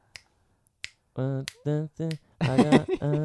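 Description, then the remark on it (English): Two crisp finger snaps, spaced under a second apart, demonstrating a rhythm, followed by a voice vocalizing a series of short, tuneful syllables in a steady rhythm. “So if you do 1, 2, 3, 4, no, she's only two clicks, right?”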